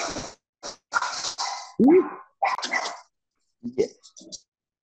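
A small puppy named Teddy barks excitedly in a quick irregular string of sharp, high-pitched yaps broken by a rising whiny yelp, with short pauses between the bursts.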